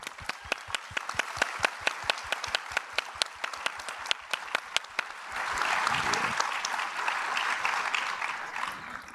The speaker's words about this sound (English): We are not the first people to talk about this, and we should give those people a round of applause too.